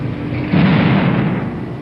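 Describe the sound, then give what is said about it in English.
A heavy, muffled explosion blowing open the trunk of an unidentified car parked by the Foreign Office on Horse Guards Parade, London, booms about half a second in, followed by a deep, sustained rumble that lingers to the end. It sounds loud, with no voices. “One unidentified car parked by the Foreign Office had its trunk blown open.”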